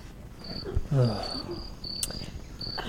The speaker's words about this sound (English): You're playing crickets?